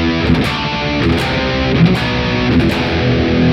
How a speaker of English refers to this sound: Crazy falsetto song. And these bells of doom. It's absolutely cheesy arrangement, like ding dong dong dong.